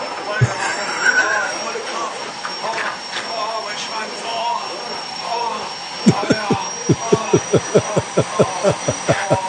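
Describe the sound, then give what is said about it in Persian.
A vacuum cleaner roars steadily with a high whine, then starts sputtering in a rapid series of regular pops and chugs toward the end, fairly loud, with some voices underneath. “جارو برقی به گوزگوز افتاد.”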